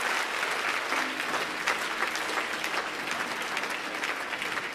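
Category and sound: crowd, audience clapping and cheering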